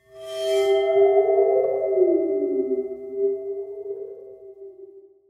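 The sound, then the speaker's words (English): A waterphone, a metal instrument with some water at the bottom, rings out with eerie, wobbling metallic tones that bend and waver in pitch, a bright scrape at the start giving way to sustained, sliding resonances that slowly fade, with no talking. “It's a water phone. Water phone, yes. Which is like this metal thing that has some water at the bottom of it.”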